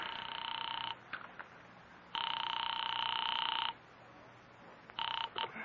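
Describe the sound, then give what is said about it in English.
A telephone rings on the line as a call is placed to North Tacoloma 3, heard as a few long, steady electronic ring bursts separated by short pauses, loud and clear with no voices. “I am actually ringing North Tacoloma 3.”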